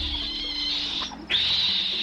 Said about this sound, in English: We're listening to the sounds of vervet monkeys. In the wild, the vervet's predators are leopards, snakes, and eagles, and the monkeys have a different alarm call for each predator.